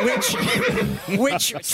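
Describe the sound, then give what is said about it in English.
A person imitates the whinny of a lady horse, a loud, warbling vocal neigh with wavering pitch and breathy bursts that lasts under two seconds. “I'm a lady horse.”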